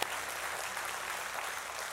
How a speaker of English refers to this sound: All right, you've clapped a lot. Can we give it up for Jesus? Come on, let's do that well. Come on. Hallelujah.